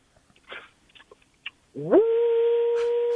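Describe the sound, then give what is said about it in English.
A 'Woo Pig Sooie' Razorback hog-calling cheer begins: after a few soft clicks and rustles, one voice lets out a loud whoop that swoops upward in pitch and then holds a long, steady howl-like note. “Give me that suey pig call right now.”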